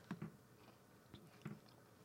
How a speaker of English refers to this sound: Okay, so this is supposed to taste like a hot fudge sundae. So you go first. So we're not chewing at the same time.